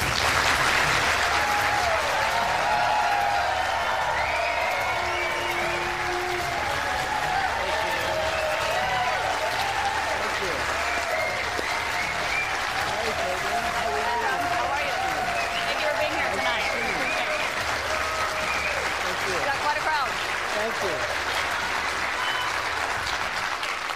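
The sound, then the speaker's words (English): A large crowd in New Hampshire applauds and cheers steadily and loudly in a standing ovation as Donald Trump is welcomed onto the stage, dense clapping mixed with shouts and whoops, with voices rising through the roar but no clear speech. “when she welcomed Donald Trump onto the stage, the way that the crowd went ballistic and kind of gave him a standing ovation, I knew at that moment it was over for CNN.”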